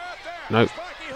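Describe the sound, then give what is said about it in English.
A single heavy, booming thud of a wrestler being slammed onto the ring mat by a snap suplex from Bob Holly, loud, with voices carrying on in the background before and after the impact. “Oh, snap suplex there by Bob Holly.”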